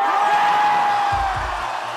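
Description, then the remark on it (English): A live concert audience roars and cheers steadily during a live song performance, with a long held whistle riding over the din and a few heavy low thuds of stomping feet near the end. “I've here elected to play for you the live version of the song, with all of its foot stomping and audience cheering.”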